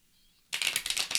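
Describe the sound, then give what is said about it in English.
After a brief hush, a deck of tarot cards is shuffled, a crisp, rapid riffling flutter with quick rhythmic pulses, fairly loud and heard alone without any talking. “You hear the deck being shuffled as we speak.”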